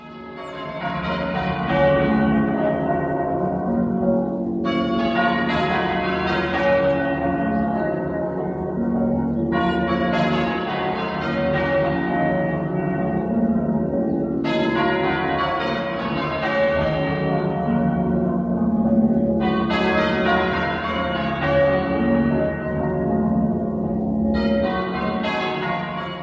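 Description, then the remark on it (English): Half-muffled church bells ring in a steady, continuous peal, with alternating strokes sounding dull and damped against clearer ones, giving a hollow, echoing quality. The ringing is loud and unbroken, with no voices. “The common thing is that the bells were half muffled in both, giving that echoey sound.”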